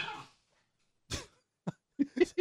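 Dogs playing and scuffling over a tennis ball, heard as a handful of quick, huffing bursts and short grunting yips clustered near the end after a brief quiet gap, with no talking.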